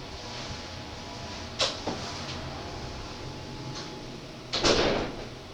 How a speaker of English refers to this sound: Hold on a second. I got to close the door.